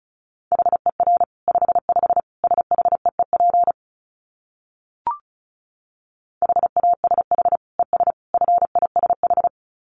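Morse code tones at 35 wpm: a steady mid-pitched beep keyed rapidly into short and long pulses, in two bursts separated by a silent gap with a single click between them.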